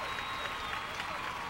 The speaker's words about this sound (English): Hold on. Hold for applause. That's what the cue cards say.